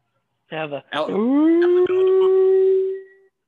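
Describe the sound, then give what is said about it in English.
The Ohio howl, an alleged Sasquatch howl: a long, loud howl that starts with a couple of choppy yelps, then swoops upward and holds a steady, siren-like tone for about two seconds before fading. No talking. “And one of them sounded just like that Ohio howl. I'm sure you've heard that.”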